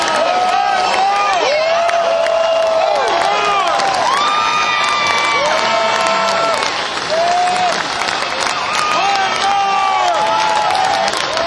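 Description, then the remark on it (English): A large concert crowd in Nashville roars with sustained cheering and applause as the band takes a final bow, loud and continuous, with whoops and high shouts rising above the steady wash of clapping throughout. “They're joining arm in arm, taking a final bow, thanking the Nashville crowd.”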